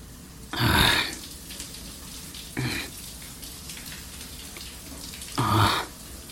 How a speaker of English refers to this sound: I'm in the shower.